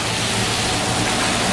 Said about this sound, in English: we are getting bus sounds.